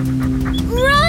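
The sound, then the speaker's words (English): A dog with long yellow fur, big teeth and a long tail pants in quick, rhythmic breaths, with a short shouted word from a person and a brief rising whine at the end. “Dog!”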